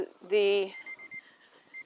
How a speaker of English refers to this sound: so that's our timer.